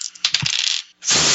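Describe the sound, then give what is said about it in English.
Dice clatter and tumble across a hard tabletop in quick rattling bursts, a brief pause, then another loud roll skittering to a stop. “All right, roll it.”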